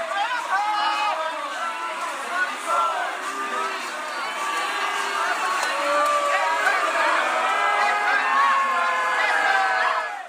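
A large crowd at a street parade on Oxford Street boos and chants for the removal of Senator Thorpe, a dense wall of overlapping voices with shouts rising above it, loud and sustained for the whole stretch without a pause.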